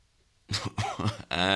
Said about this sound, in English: Sorry, I just coughed up a little bit there.